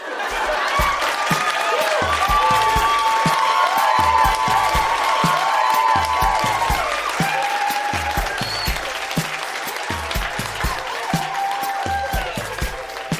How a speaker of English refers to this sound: Yellowknife, that has been Grown-Ups Read Things They Wrote as Kids. Huge round of applause for all of the readers tonight. So good.